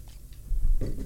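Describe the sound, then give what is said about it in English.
A brief sip from a drink, a soft wet mouth sound followed by a low swallow, with no talking. “Have a quick little sip of this.”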